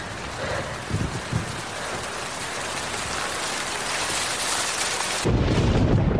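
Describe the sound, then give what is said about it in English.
Heavy rain from a storm over a bay, where a fleet lies anchored, pours down steadily in a dense, hissing wash, with a deep low rumble swelling in near the end as the storm intensifies. No one speaks. “The storm prevents the Irish fleet from sailing.”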